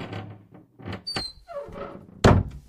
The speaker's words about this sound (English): The door to the basement opens as John steps in.